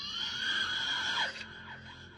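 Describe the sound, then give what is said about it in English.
A void beast screams as its featureless face forms a gaping mouth: a shrill, sustained monstrous scream with layered, piercing tones holds for over a second, then breaks into a falling, warbling shriek that fades away. “And with a horrifying shriek, what is called a void beast, its featureless face all of a sudden creating a feature of a mouth, gaping wide open, screaming.”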